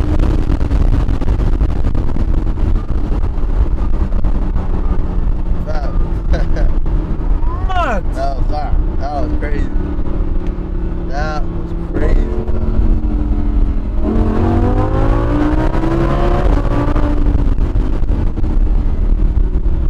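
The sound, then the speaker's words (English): Steady engine drone of a convertible car driving with the top down, with heavy rushing wind noise and the engine pitch climbing near the end. Muffled voices come through faintly. “I like this. Of course, I like the top down, you know, for sure.”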